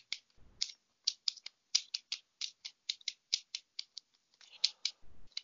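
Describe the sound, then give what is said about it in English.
A deck of tarot cards being shuffled, a quick series of crisp, dry clicks and snaps in an uneven rhythm, with a couple of soft low thumps, and no one speaking. “Wow, they have me shuffling here.”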